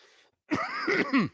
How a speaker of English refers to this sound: Guys, I've had a wicked bad cough.